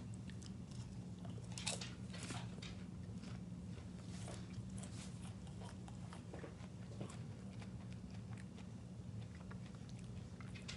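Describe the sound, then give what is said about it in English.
Steady crunching and chewing of Candy Pop popcorn with M&M Minis candy pieces during a taste test, crisp bites repeating irregularly over a low background hum, with no one talking. “So 3, 2, 1, taste test of the Candy Pop Popcorn M&M Minis.”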